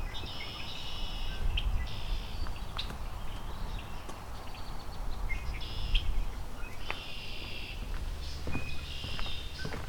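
common yellowthroat singing

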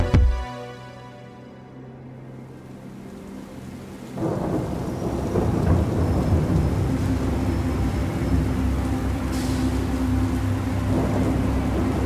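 rain and thunder

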